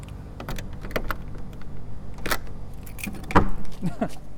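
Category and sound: household object, keys jangling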